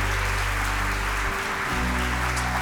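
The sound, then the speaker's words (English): Sustained audience applause at a church service for people who have made commitments to follow Christ: a dense, even wash of clapping that holds steady throughout, with a low humming drone underneath and no voices. “Give them one more big hand.”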